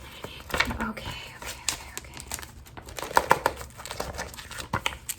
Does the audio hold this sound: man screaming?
no